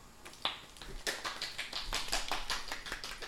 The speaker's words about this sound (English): That's how I clap.